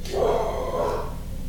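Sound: dog barking excitedly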